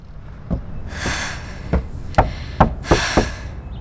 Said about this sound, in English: Footsteps knocking.